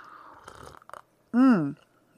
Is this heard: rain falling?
no